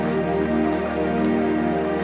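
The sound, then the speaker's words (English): A crowd, called on to stand up, stomps their feet together, making a dense, continuous rumbling patter with no distinct individual beats, steady and fairly loud throughout. “Stand up. Stomp them. Stomp them.”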